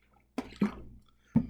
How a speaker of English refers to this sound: Bit of a water break.